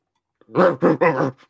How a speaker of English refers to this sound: This dumb dog is trying to get in. What do I do? Let him in. Let the dog in the house.